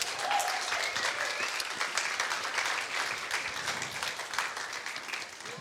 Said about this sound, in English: So six new members. As they come up, go ahead and give them a hand clap.